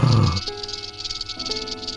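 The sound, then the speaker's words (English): A rattlesnake's dry, continuous buzzing rattle runs throughout, steady, with a low thump at the start and faint sustained tones underneath. “Rattler.”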